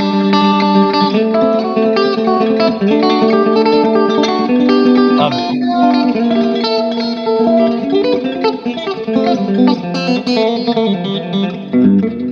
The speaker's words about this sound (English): Like all of those kind of banjo-y rolls.